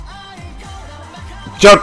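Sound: dog barking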